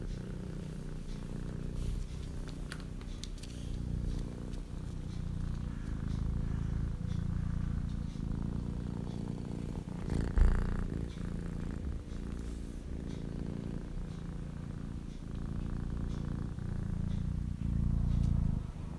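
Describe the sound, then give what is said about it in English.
A cat named Maya purrs steadily for the whole stretch, a low, continuous rumbling drone with a gentle pulsing rhythm and one brief louder bump midway. No one speaks. “But getting back to Maya, I'd like to share with you her purr.”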